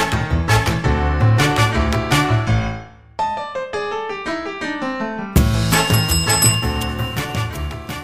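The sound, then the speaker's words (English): A champagne bell rings loudly in a rapid run of bright, shimmering strikes, softens into lighter, sparser chimes midway, then bursts back into full ringing. No one speaks. “Friends, we got a champagne bell.”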